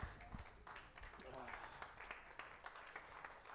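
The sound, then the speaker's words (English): A church audience clapping their hands for the nursery being open, a dense, steady patter of applause lasting several seconds, with some voices murmuring underneath. “Somebody give a hand clap for that.”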